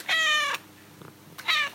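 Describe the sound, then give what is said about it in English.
A cat named Lynn 50 meows twice, loud: a long, drawn-out meow, a short pause with faint background noise, then a second, shorter meow that is cut off at the end. “So we now go live to Lynn 50 for her thoughts on this week's episode.”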